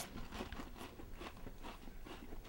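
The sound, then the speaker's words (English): A man chewing food during a timed eating challenge, with wet, crunchy bites repeating in an uneven rhythm. Fairly quiet overall, with no talking. “That was the real sound of him eating.”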